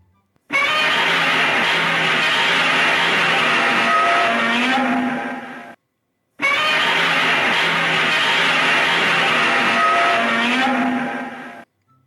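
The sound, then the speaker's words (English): Godzilla's roar sounds twice. It was made by rubbing a pine tar resin-coated glove along a double bass string and slowing down the playback. Each is a loud, rasping, screeching bellow lasting about five seconds, with a brief silence between and no talking. “Here is Godzilla's iconic roar.”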